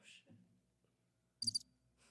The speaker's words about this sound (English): You can play the crickets if you'd like.